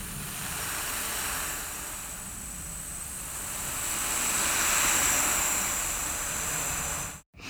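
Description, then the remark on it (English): A breath artist vocally imitates ocean waves for a film with a long, breathy hiss that slowly swells and recedes like surf, rising to a peak midway before stopping abruptly near the end. No speech. “Ocean waves.”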